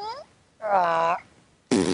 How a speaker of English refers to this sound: Yeah, except it kind of sounded like she was farting.